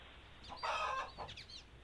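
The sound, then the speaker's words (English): A bird clucks in a quick burst, a longer squawky cluck followed by a couple of shorter, softer ones, heard on its own against low background noise. “What am I gonna fucking do with this bird?”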